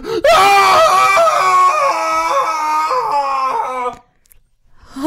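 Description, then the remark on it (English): A single drawn-out, wavering muffled cry rising into a scream, heard from a distance, loud and sustained for several seconds, then cutting off abruptly into near silence with a faint sound at the very end. “you guys hear what sounds like a muffled cry and a scream from the distance.”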